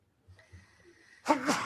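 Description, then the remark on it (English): A single sharp sneeze bursts out near the end after a moment of quiet, loud, with a brief breathy tail. “Bless you. Excuse me.”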